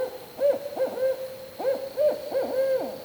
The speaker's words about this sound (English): The barred owl is very common here in Maryland. So the barred owl sound kind of sounds like, who cooks for you? Who cooks for you?